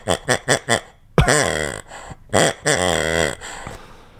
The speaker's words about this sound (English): So to our listeners, is a green rubber pig. Rubber pig. And how big is that? Like the size of a Nerf football. Sure. I would say. Yeah. It's a green rubber pig. And this is what it sounds like.